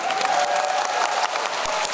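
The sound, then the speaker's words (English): Steady, dense applause sound effect from a crowd, many hands clapping at once in a continuous wash of sound that stays loud and even throughout, with no voices standing out. “You can hear them. We've got sound effects.”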